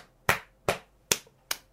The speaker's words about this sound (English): And for the women, the sunnah is to clap the hand.